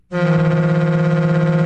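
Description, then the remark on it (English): A loud, sustained boat horn sound effect blares after a brief silence, a deep steady tone rich in harmonics that holds at constant volume with a slight wavering buzz. “Boat horn sound off, Tommy Lee sound off.”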